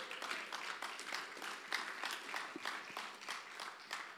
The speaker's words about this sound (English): Come on, let's give God a big clap again.